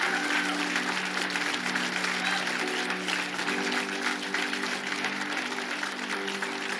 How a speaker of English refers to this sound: let's do that again, and let's give him the round of applause that he deserves to let him know how much we appreciate him.